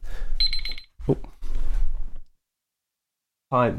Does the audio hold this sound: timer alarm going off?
yes